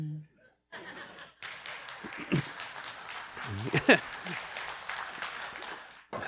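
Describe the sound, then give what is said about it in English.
An audience breaks into applause, a dense, steady patter of many hands lasting about five seconds, with some chuckles and crowd voices mixed in before it cuts off. “Okay, I'm not sure how I feel about that clapping.”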